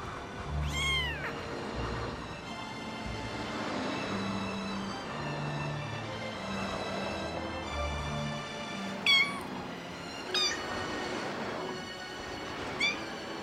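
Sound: kitten meowing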